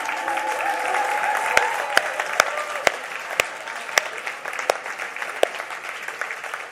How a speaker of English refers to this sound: It wasn't that long ago when we clapped their engagement. And now we're applauding their wedding.